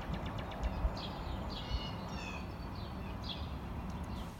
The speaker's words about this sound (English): My only company is the birds, and they provide peaceful background music for studying.